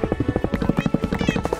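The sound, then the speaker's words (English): A dense flurry of short, overlapping video game cat meows from cats still left inside after an explosion, many cats crying at once in quick repeated bursts, fairly loud, with no talking. “Looks like there were still some of those cats in there.”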